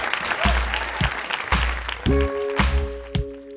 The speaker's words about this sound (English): Please clap. Please clap.